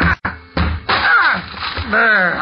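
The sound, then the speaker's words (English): Three heavy, booming thuds as a thick door is battered in, followed by long creaking, groaning strains as the wood gives way, with strained shouts mixed in. “Break this door down, somebody!”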